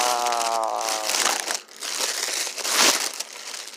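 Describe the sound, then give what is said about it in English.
A foil helium balloon crinkles and rustles continuously, with bright, crackly bursts of noise and a brief tonal squeak at the start, fairly loud throughout with no talking. “Oh no, I might have to get a new balloon.”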